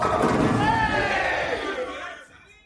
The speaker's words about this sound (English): I love the fact that the bowling ball hits and everybody cheers right after she says that, because it's like they're cheering for her.